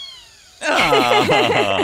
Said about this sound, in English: So it looks like a little kitten, and it is an adult cat. And aww. Let me. Okay, actually, I'm going to play that meow because I think that is very cute.